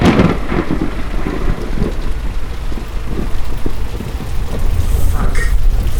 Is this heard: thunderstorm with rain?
yes